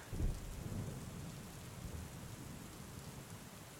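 Steady rain falls on city streets between temple grounds and academy walls with a broad, continuous hiss, and a low rumble of thunder swells briefly near the start before fading under the downpour. No voices are present.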